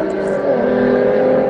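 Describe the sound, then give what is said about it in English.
Loud, steady roar of race car engines droning past amid lap traffic on the straight before turn 12, a dense, continuous buzz of engine tones that holds for the whole moment without fading. “Already, I see where we got there's a lot of lap traffic that these guys have to deal with here on the straight stretch here before turn number 12.”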